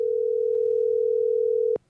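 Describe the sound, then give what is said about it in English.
A steady, unbroken telephone dial tone hums loud for nearly two seconds as a phone call is placed to a guest, then cuts off abruptly with a faint click, leaving near silence. “Let's get Matt on the phone.”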